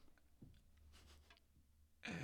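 Airy breath noise puffs against a microphone, soft and hissy at first, ending in a sudden loud, rushing blast of breath right on the mic. No talking.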